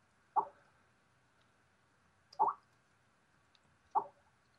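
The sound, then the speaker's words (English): A Skype video call's bubbling connecting tone: three short, soft, watery plops at roughly even intervals over a faint steady hum, with no one speaking. “And well, I just let it bubble until it clears, right?”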